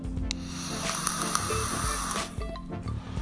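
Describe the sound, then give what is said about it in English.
A vape device filled with a sweet waffle vanilla ice cream sandwich with strawberry syrup e-liquid hisses steadily for about three seconds, a continuous airy sizzle broken by scattered sharp pops and crackles, with no one speaking. “If you heard that one popping and hissing at me, it's because some of the sweeter ones do.”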